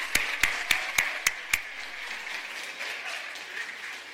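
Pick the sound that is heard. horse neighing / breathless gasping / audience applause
audience applause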